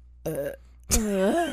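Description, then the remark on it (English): Two loud burps made on cue in quick succession, the first short and the second longer and drawn out with a rising, croaking tone. “Can you burp on cue”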